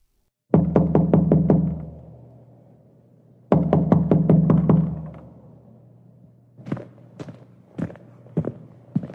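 Two loud bursts of rapid knocking on a wooden door, about five quick raps each with a booming resonance, followed by a few scattered, softer knocks.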